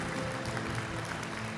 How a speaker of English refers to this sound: Amen. Can we put our hands together and just give God a cheer this morning? Do a better job than that.